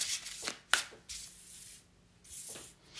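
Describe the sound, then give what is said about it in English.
A deck of tarot cards being shuffled before a reading: several soft, papery swishes and riffles in uneven bursts, with one sharp snap of cards early on, and no voices. “There's definitely, like, I've been pre-shuffling my decks, as I always do before any reading that I do, before I started recording.”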